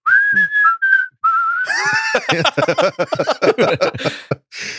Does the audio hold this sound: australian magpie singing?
no